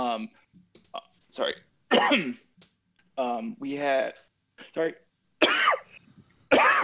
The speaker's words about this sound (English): Cough it away, brother. I'll drink for him. No, boss, don't cough. I'll cough for you.